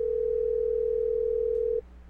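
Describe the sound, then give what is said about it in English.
A telephone ringing tone on the line while calling a grandmother: one steady, unbroken electronic hum held for nearly two seconds, then cutting off abruptly into faint line noise. No voices. “Oh, here it is. It's ringing.”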